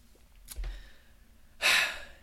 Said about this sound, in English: Yeah, no, I'm just breathing in a little bit.